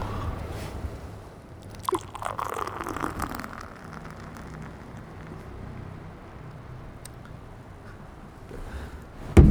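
A short click as a can or bottle of Tokyo Black beer, a dark beer, is opened at home, then a rush of the beer pouring into a glass, followed by a steady fizzing hiss of foam settling. No one speaks.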